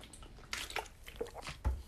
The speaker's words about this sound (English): Let me take a drink of water, and we will get into the Final Four picks of bulletin board material everybody has been waiting for.